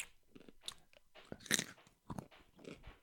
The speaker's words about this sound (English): Chew deeper into that microphone.